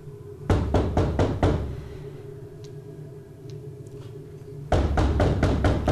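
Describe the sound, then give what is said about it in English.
A quick series of five loud knocks on a door, then a pause over a low steady hum before another round of heavy rapid knocking begins. No one speaks. “No, it's just let me just knock on the door.”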